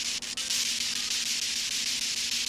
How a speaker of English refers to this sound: You hear that white static? That is where you're going to find the voices.